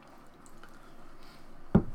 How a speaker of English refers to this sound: I'm going to just slide that lemon in my water right there. And then you've got a Tom Collins and the lemon waters chaser.